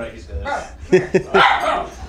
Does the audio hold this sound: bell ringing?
no